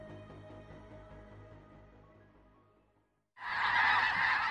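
A steady chorus of many geese honking outdoors at Lake Byron, South Dakota, on a Sunday morning in their season of migrating south; dense overlapping calls fade slightly, pause briefly, then return as a loud burst of honking from a large flock.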